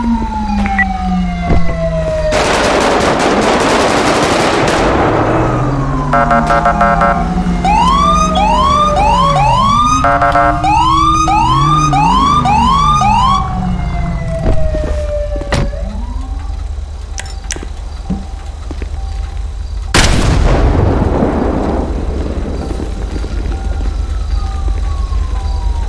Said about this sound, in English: Got a unit on the roof. 5 Delta 01, we got a fire on the roof. We gotta move. Oh, fuck. Oh, shoot. Call fire EMS. Watch out. Still got explosions on the roof.